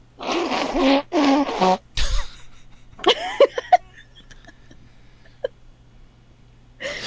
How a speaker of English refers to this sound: You're going to take this dirty laundry that's coming out of the hamper. This is an old shirt. I'm going to blow my nose into it.